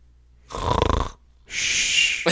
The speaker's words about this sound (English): Nice, dude. Get a little snore effect in there. Love it. Fucking love it.